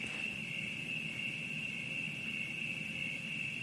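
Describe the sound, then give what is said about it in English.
A steady, high-pitched chorus of crickets chirping continuously, with a soft low rumble of ambient background noise beneath and no voices. “So with that in mind, I'd really like to encourage every single person tonight, as you're sitting, let the crickets fill you.”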